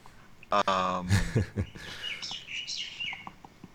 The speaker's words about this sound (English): Well, I can hear the birds, so that's a nice environment. Oh yeah, and they do that in January too.